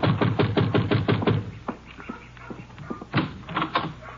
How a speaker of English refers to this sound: You better knock again.